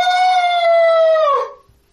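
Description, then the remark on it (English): A person's voice imitates a string of unsettling shrieks forming into one horrible voice, like a gargantuan baby screaming: one loud, high, strained wail held for about a second and a half, then sagging in pitch and cutting off into silence. “And there is this unsettling shrieks, string of shrieks that all now form into one horrible voice.”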